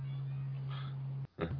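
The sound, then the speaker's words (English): A cat meows briefly near the end, right after a short silent gap, with a steady electrical hum droning underneath and a fainter meow-like cry earlier. “cat's spooky meows are picking up on the mic or not.”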